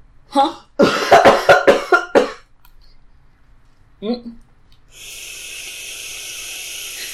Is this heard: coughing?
yes